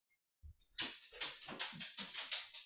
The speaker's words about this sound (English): My dog is making a ruckus. Hold on.